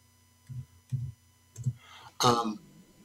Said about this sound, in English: I'm just typing something right now. Hold on a minute.